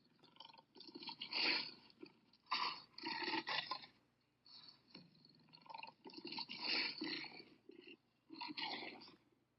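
A lion growls in a series of rough, breathy bursts, each swelling and fading with short pauses between, moderately loud, with no one talking.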